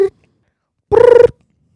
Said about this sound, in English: Do you wanna pick up on line two? Go ahead. Phone's ringing.